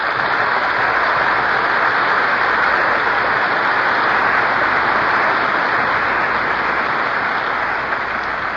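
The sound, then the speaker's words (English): A large audience at the Civic Auditorium in Oakland, California, applauds steadily, a dense, even wash of clapping that holds at a constant loudness for the full stretch with no voices over it. “I just told our audience about my hazardous journey to Oakland, and they applauded.”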